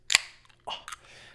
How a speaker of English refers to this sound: Wait, I got to crack open a Bang real quick. This is not sponsored by Bang.